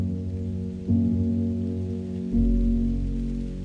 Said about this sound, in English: Soft rain begins to fall.